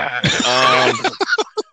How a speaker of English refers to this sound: He's got to clear his throat for this one. Let me clear my throat.